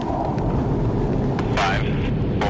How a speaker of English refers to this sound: The F-18s are traveling at almost the speed of sound.